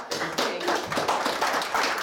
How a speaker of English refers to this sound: To the front here. Yeah, it's a round of applause. Well done.